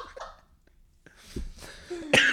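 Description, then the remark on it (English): A couple of short, harsh coughs from a person with a cold, the second louder than the first, separated by a brief pause with faint breathing around them. “Sorry, I still got a little bit of a cold if I'm coughing”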